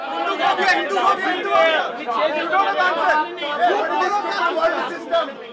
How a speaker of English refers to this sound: There were people arguing with each other, yelling at each other, saying, no, you be quiet, no, no, this or that, like getting at it about caste.